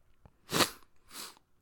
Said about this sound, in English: Sorry guys, that was awful. I can't help it, but I feel like I'm gonna sneeze. Yep, I did. It happened. Oh Lord, sorry about that.